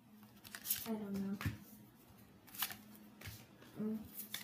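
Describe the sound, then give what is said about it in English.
Playing cards are slapped down onto a pile during a card game, in several quick, crisp flicks at irregular intervals, with a faint murmuring voice underneath. “I just dropped a whole bunch of cards on her.”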